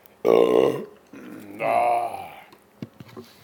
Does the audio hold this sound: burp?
yes